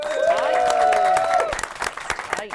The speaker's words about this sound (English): 10 goals for Natalie Sawyer. Round of applause. There we are.